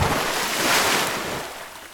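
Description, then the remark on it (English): A loud splash into ocean water as a girl and a cat jump from a ship's rail into the sea, a broad rushing whoosh that swells and then slowly fades into churning surf over a couple of seconds, with no one speaking. “They fell through the air for what Rehna felt was an age until they hit the water with a loud splash.”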